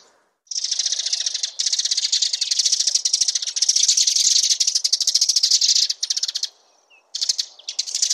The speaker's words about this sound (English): we're again seeing these little flocks of house sparrows sitting in a bush, chattering away to each other, gobbling away, talking faster than you can even think.